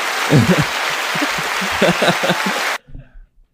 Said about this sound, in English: What was that? That was applause.